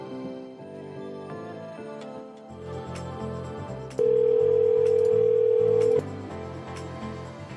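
A loud, steady telephone tone, heard after a phone call drops, sounds for about two seconds in the middle, cutting in over a busy background of music before stopping abruptly.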